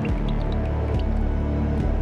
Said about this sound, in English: So there was water like dripping off into the tub. And then I heard the dripping leave the bathroom, come onto the landing at the bottom of the stairs. I could hear the dripping coming up the stairs.